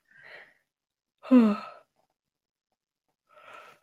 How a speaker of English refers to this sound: Sorry, I'm falling asleep. just rudely yawn into the microphone.